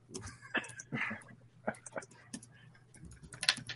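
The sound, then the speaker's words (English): Irregular bursts of computer keyboard typing, crisp, moderately loud clicks over a steady low electrical hum. “I hear somebody typing.”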